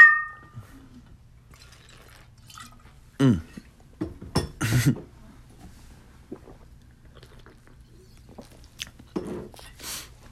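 Glasses of vodka and scotch clink together in a toast with a short bright ring that fades quickly, followed by scattered sipping and handling noises without talking.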